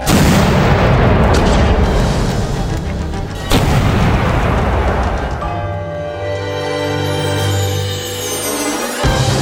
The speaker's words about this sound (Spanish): Alisten los cañones. Desde esta distancia en la que estamos, los cañonazos son los que nos van a permitir llegar con tiro certero por encima de las lagunas. ¡A mi orden! ¡Fuego!